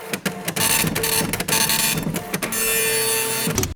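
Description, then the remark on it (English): A mechanical, whirring electronic scan sound plays for a few seconds, dense and steady with brief stutters and clicks, like a printer-style machine working, ending abruptly: a ship's computer system scanning for a cat. No voices. “Scanning for cat.”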